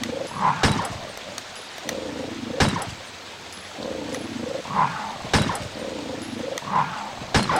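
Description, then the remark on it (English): Dogs growl and snarl in harsh, repeated bursts, with sharp snapping attacks cutting through a steady low rumble. The sounds are fairly loud, and no one talks. “Oh, man, these dogs, mate.”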